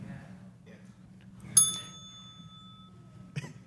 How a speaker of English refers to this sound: Pass. Did you just ring in to pass? I like the sound of the bell.